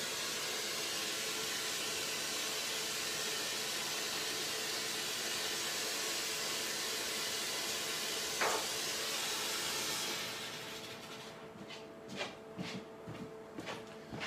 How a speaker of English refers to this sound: So that's the boiler water from the cooker added, and it just about covers the mince.